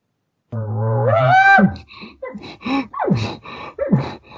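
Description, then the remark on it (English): A voice imitates an elk bugle using a bugle call: a rising, whistly tone that climbs in pitch and holds briefly, followed by a series of shorter, lower grunting chirps and mews. “He'll just make little stuff like that, and sometimes I'll make them even shorter or a little longer, but I'll play with that little bit of a bugle tone.”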